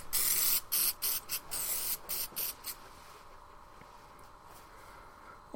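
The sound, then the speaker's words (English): A series of short, hissing spray bursts in quick succession, fairly loud, followed by a few weaker puffs before the sound trails off into quiet background noise. “get my bloody kegs off, Colin, and give me a spray”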